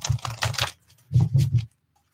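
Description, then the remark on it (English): A deck of Mystic Art Medicine oracle cards being shuffled, two quick bursts of rapid papery flicking and tapping separated by a brief pause, with no voices. “So the next thing we're going to do, go back to Mystic Art Medicine after I shuffle it.”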